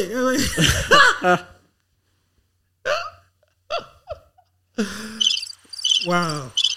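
Crickets chirp in short, rapid pulsed bursts near the end, high and clear over a quiet background, with a few brief throaty vocal noises earlier and between them, played as a gag for silence.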